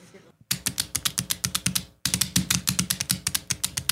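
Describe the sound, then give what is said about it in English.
A dog's footsteps: quick, sharp claw clicks tapping in a fast, steady patter, broken by a brief pause before the run of steps resumes. “These are the footstep sounds of which animal? A dog, a lizard, or a duck?”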